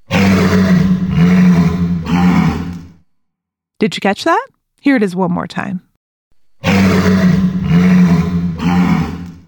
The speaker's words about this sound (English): So, what's that sound? A walrus! A walrus. Walruses are known for their giant tusks. Tusks kind of look like two really long pointy teeth coming out of a walrus's mouth, and they can grow to be 3 feet long. That's longer than a grown-up's arm.